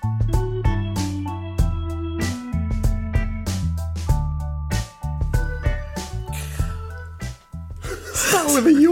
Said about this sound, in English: Started with a yawn. That's amazing.